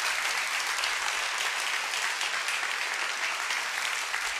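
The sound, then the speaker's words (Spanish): A church audience applauds during a Spanish-language sermon, a dense, continuous wash of clapping that holds at an even loudness for the whole stretch without pausing or swelling. “Aplaude, no pares.”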